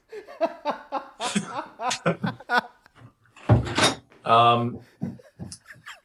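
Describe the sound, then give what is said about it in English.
Voices talk and laugh, then a single solid thump cuts in midway as a door is shut, followed by more chatter and a burst of laughter. “Can you close the door?”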